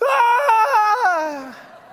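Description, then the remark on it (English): A woman lets out a loud, high-pitched scream as her car slides out of control, holding and wavering for about a second, then sliding downward in pitch and trailing off as it fades. “And then I just kind of quit screaming, because I still had about 50 yards to go before what was in front of me was going to be met.”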